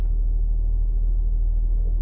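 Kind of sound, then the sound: vehicle, car interior rumble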